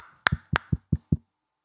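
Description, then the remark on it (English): A quick run of about five sharp knocks on a door, evenly spaced over a second, the first two brighter and harder, then silence. No one speaks. “But luckily, there's a knock at the door.”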